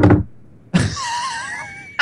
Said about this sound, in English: So are you banging the table every time you talk?